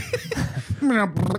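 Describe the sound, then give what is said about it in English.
A quick run of gurgling fart noises: several short wet sputters, then a longer buzzy blurt that slides downward in pitch, followed by one more brief burst, all fairly loud. “We gotta bring happiness, and what better way to do it than with fart noises?”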